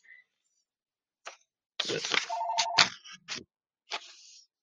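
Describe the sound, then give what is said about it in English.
A short electronic phone ring, a steady mid-pitched warbling tone lasting about half a second, surrounded by sharp bursts of rustling, clattering noise that start and stop abruptly. “And of course, we got telephone ringing.”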